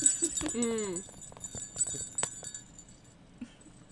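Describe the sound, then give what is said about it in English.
Small jingle bells on the backs of a person's shoes shake in a few quick, bright bursts, their thin metallic ringing lingering between hits, with a short voiced sound near the start and faint background noise. “Yeah, I've got bells on the backs of my shoes. You can hear them.”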